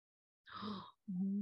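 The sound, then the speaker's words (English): A single breathy, drawn-in gasp lasting about half a second, followed by a brief voiced hum, moderately loud, as if one voice is acting out a collective gasp. “Collective gasp.”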